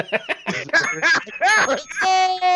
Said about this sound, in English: ring the bell again for yourself. That was amazing.